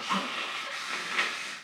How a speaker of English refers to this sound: I am about to blow my nose. I know. I see it.